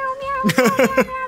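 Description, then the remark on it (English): A quick burst of several cats meowing as they scatter out of an alleyway, about four short overlapping yowls in under a second, fairly loud, over a faint steady tonal hum. “Unfortunately, the muddy water that you caused to slick the alley makes the tabaxi slip and slam into one of the cat statues, sending cats scattering out of the alleyway.”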